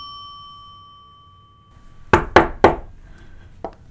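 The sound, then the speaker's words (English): A ringing chime fades away, then three sharp knocks rap on a door in quick succession, followed after a short pause by a fourth, softer knock. “Who is it? You know who it is. Please go away.”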